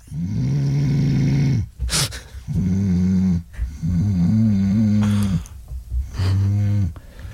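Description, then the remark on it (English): Loud, deep snoring in four long, rumbling pulls separated by short breathy pauses, heavy with a guttural, almost animal-like growl. “but I do think we've got some wildebeest living under the bed.”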